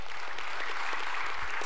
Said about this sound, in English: And that semi-truck filled with toys went to the National Distribution Center. You can applaud, yeah.